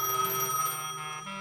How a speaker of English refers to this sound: Until later that afternoon, the phone rings.